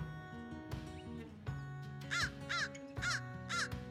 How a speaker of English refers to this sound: And one of the easiest ways to find crows is to just listen. They have a very distinctive sound.